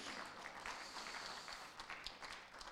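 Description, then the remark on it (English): A church audience claps for Jesus in a steady, dense patter of overlapping hand claps that holds at an even level throughout, with no clear voices over it. “Come on, clap for Jesus.”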